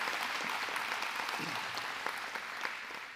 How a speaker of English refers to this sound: Seriously, can we give them just a round of applause?